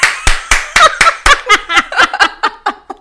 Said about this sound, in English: Clap. Clap for the one time.